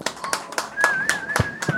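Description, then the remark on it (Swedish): Short burst of applause during a live show: roughly eight sharp, uneven claps over under two seconds, moderately loud, with a thin sustained tone and some vocal sounds running underneath. “Det krävs till och med en applåd.”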